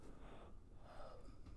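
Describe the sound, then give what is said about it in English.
A single drawn-out yawn, breathy and airy with a slight rising vocal tone partway through, fairly quiet with no words spoken. “Now that you yawned, I have to yawn.”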